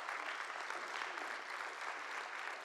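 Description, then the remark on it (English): An audience claps hands to the Lord in a morning church service, a dense, steady wash of applause, many overlapping claps blending into a continuous crackle with no voices standing out. “Someone clap your hands to the Lord this morning.”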